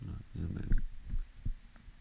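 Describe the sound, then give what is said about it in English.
A heavy metal tank bangs against a house wall, giving a few dull, low thuds at irregular intervals, muffled and booming, with a faint murmur in the background. “That thing that's smashing against the house is a tank of some sort, like propane or something.”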